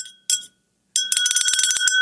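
A glass is tapped twice with bright ringing tones, then a quick, steady run of clinks follows, clear, the pitched ring sustaining between taps, clinked to get the attention of a room of guests.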